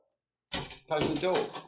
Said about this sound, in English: The door.